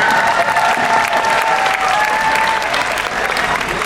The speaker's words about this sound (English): I'd say latex pants are pretty specific. They look good, though. Ooh. They deserve their own round of applause.